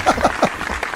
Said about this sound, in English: I think we need to like start a slow clap for that.